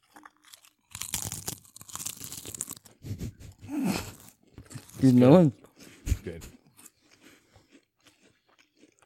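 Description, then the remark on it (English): Slow crunching and chewing of chips, loud crackly bites spread over a few seconds, followed by a man speaking briefly as the chewing continues faintly. “that slow crunch.”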